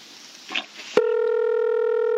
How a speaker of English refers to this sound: Maybe 7-Eleven doesn't answer their phone because of coronavirus.